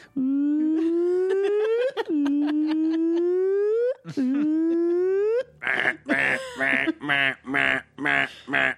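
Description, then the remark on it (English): A voice imitates the car alarm from How I Met Your Mother: three loud rising whoops, each sliding upward in pitch, then a fast series of about six choppy, warbling honks. Loud throughout, with no other talking. “Just do the How I Met Your Mother car alarm.”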